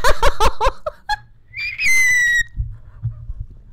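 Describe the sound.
A person imitates a pterodactyl with a loud, shrill, high-pitched screech held for about a second, preceded by several quick rhythmic vocal bursts, then low muffled thumps.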